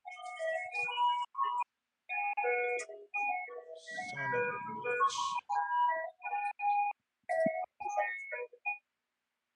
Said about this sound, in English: Damn, you got the ice cream truck in the back.